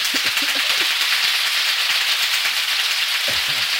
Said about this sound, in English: Is that applause? Yeah, that was terrible. That sounds like a car starting. No, that was the egg cooking in the frying pan.